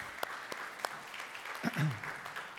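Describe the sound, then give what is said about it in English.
An audience applauds steadily for two men, a dense wash of clapping with a few sharper claps standing out, and a brief voice-like murmur rising near the end. “So let's give these two guys a round of applause.”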